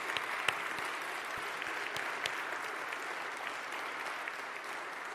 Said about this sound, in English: There they are, and that deserves an applause as well. Thank you.